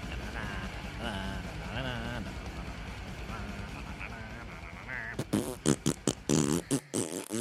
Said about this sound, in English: It's like, so far it's just a haunted house soundtrack. But I have a feeling it's which gonna, I appreciate. It's going to turn into some kind of crazy death metal in a second. Oh, yep, there we go.